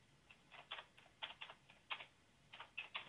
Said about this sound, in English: Man, she bangs that keyboard.